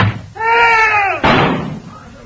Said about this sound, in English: Now, I shall close the door.